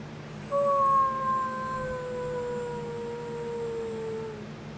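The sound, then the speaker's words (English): A person lets out one long, wolf-like howl. It starts strong, then slowly slides downward in pitch as it fades over about four seconds, against a low steady hum. “Why don't you howl for everybody”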